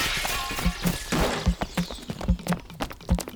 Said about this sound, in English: Oh, the window's been smashed. Oh, the beautiful window.